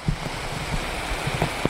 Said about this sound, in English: This has really stepped up in the last 5 minutes or so. The rain, the outer bands have picked up.